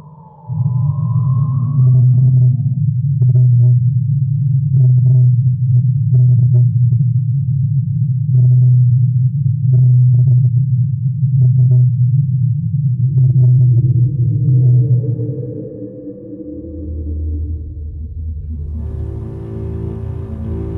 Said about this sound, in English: Starting with its detection by scientists from Woods Hole Oceanographic Institute in 1989, the whale's unusual voice has been heard every year since. It uses the language of a whale, but not the frequencies of a whale. This is what it sounds like.